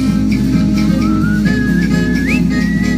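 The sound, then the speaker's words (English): A man, a singer, whistles a lilting tune, the pitch sliding and holding across a few notes, clear over a steady low musical backing with no talking. “I knew this guy could sing. I didn't know he could whistle.”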